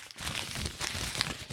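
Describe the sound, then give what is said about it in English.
A long paper suggestion note, crumpled up really tight, being unfolded, with a steady run of crisp crinkles and small crackling pops for a second or two. No one speaks. “Unfurling it. It's a big, long one. Yeah, they crumpled up really tight.”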